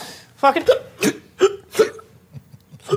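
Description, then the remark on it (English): A series of sharp, repeated hiccups as the Hicks all hiccup uncontrollably comes in quick uneven bursts, about five or six in a row, loud, with a voice and vocal noises mixed in among them. “The Hicks all hiccup uncontrollably.”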